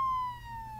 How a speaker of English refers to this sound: Sirens! I must be in a hospital!